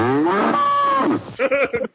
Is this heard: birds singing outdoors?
no